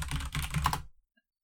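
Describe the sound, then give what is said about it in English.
A quick burst of loud typing on a clacky computer keyboard, dense rapid clacks for under a second, then the keys stop and the sound falls to near silence. “Clacky, clacky keyboard.”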